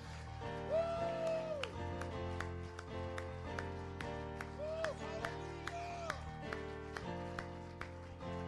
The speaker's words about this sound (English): If that's your Jesus, will you stand up, give him a hand clap of praise, and say thank you. Come on, bless him.